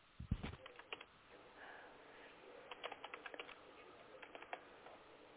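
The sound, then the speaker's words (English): Quick bursts of keystrokes clatter on a computer keyboard, irregular clusters of light clicks with brief pauses between them, fairly quiet, with no one talking. “Let me finish typing.”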